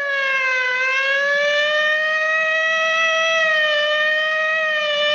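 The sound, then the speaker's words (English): A police siren wails loud, one sustained tone that climbs slowly in pitch and holds steady for several seconds, with no voices over it. “Hear the siren? That's a police siren.”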